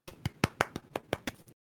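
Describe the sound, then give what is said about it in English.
A brief, small round of applause: about nine sharp hand claps in a quick, fairly steady rhythm, moderately quiet, ending abruptly with no voices. “A small round of applause for mutually assured destruction.”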